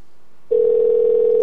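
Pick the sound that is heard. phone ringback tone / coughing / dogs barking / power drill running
phone ringback tone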